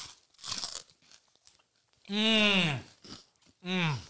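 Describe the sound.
Crisp crunching and chewing in a few short bursts, followed by two drawn-out, voiced hums of appreciation from someone eating beef jerky together with crunchy Cheetos, the jerky chewed first and then a Cheeto bitten.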